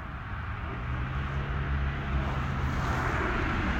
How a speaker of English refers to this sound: Just listening to the cars go by. It's a Chevy. That was a Jeep. That was Mopar. Yeah, what's this coming down? Oh, yeah, classic Ford. Classic Ford. Was that a Nissan? Was that a Kia?